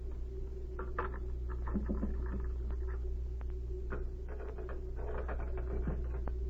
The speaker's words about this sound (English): Now, let's see. I'll look through his desk first. It's locked. Perhaps one of these skeleton keys Z gave me will work.